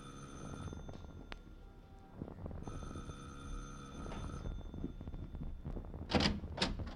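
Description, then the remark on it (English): A doorbell rings in two sustained bursts, each a steady, bright electric tone, separated by a short pause and followed by a couple of sharp clattering clicks. “You ring the bell this time, Danny.”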